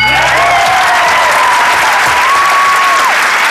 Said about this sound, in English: Why are you clapping? Can a brother clap for himself? No.